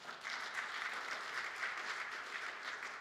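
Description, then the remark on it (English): An audience applauds, a dense, steady wash of many hands clapping that holds at an even, fairly loud level for the whole stretch, with no voices over it. “Let's give the Lord a hand.”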